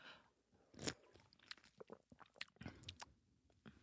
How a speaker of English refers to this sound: Sorry, we just took a sip of the coconut water.